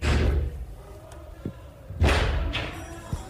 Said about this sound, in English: During which time they listened to the invaders banging on that door, as you can hear on a recording from one of the staffers' phones.